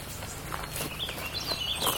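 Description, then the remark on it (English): A small finch chirps with thin, high calls, brief and repeated, rising toward the end over steady outdoor rustling and soft footsteps in a marsh, not loud. “There's a little finch or something. What is it? Yellow something?”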